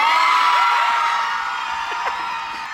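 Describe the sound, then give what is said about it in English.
A large crowd of wedding guests cheers and whoops in one long, sustained roar on learning that a going-away party is actually a wedding, with scattered high shouts rising above the steady wash of voices before it slowly begins to fade. “This is a long, sustained cheer.”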